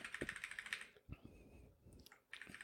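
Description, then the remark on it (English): Rapid clicking of computer keyboard keys in quick bursts, moderately loud, pausing briefly in the middle before the tapping resumes; no one speaks. “I love how whenever you go to your keyboard, I'm like, I should look at new comments, too.”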